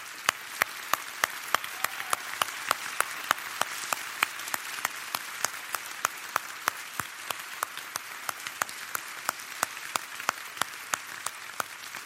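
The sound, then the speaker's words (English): Sustained applause from a large audience for members of the military who stand to be recognized, dense clapping continuing steadily for about twelve seconds with no speech over it. “If you are in any sense in military, would you just please stand? Because I'd like to identify you, and I would just like us to clap.”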